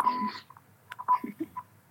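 Morse code beeps used to spell out insults: a run of short and longer tones at one steady mid-high pitch, broken by irregular gaps, with a few faint murmurs underneath.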